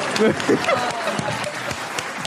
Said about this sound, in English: Yeah, let's just clap for him.